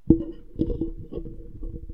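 Keyboard typing: a handful of irregular, soft clicks and taps at moderate distance over a low steady hum, with no one speaking.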